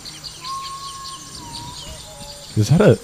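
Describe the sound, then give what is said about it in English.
A bird gives a slow, drawn-out whistle: one long steady note followed by a couple of shorter, lower ones, soft against faint chirping. A person's voice cuts in briefly at the end. “Is that a slow whistle bird?”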